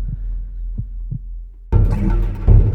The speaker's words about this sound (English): Hearts beat themselves.